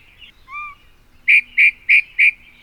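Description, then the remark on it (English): A yellow-breasted chat, a summer resident of Grand County around Moab, calls alone, opening with a soft, gliding whistle followed by four loud, harsh, evenly spaced notes in a quick, steady series, clear against a quiet background. “Perhaps you've wondered what that crazy vocalization is at the beginning of the Grand Birds show.”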